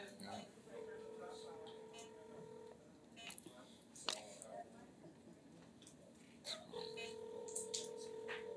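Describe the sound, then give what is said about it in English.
A phone's ringback tone sounds twice, each a steady two-second burst separated by a long pause, with no answer. Faint voices and background clatter continue underneath. “Uh-oh, she ain't answering the phone, though.”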